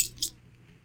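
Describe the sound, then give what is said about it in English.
A brief metallic jangle of keys on a key ring, two quick bright shakes at the start, then only a low background hum. Fairly quiet. “My other keys are all on the ring.”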